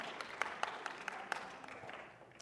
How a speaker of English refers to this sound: so give a round of applause for our sound people, you know, they got it going.